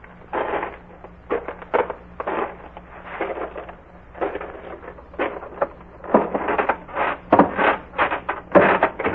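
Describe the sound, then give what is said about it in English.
Footsteps thud and creak on the three wooden porch stairs of a farmhouse in an irregular series of moderately loud steps, with a faint low hum underneath and no one talking. “12 steps away from a porch with three creaking stairs.”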